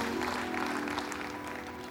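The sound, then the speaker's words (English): A church audience applauds steadily after a pastor mentions 36 years of marriage, a dense wash of many hands clapping at once, fairly loud and sustained without pause, with no voices standing out above it. “Yeah, that's worth clapping about.”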